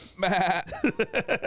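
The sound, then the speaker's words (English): A person imitates a sheep as a sound effect: one drawn-out, wavering bleat followed by a quick run of five short, choppy baas, fairly loud, with no other talking. “would you be my sound effects for this? Yeah. Okay, cool. So first off, there are sheep.”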